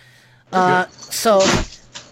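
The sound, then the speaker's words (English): A sudden dull thump as a cat, Loki, slams into the table beside the couch, heard once amid a person talking, with a brief sharper clatter just before it. “Yeah, he just slammed into the table beside the couch.”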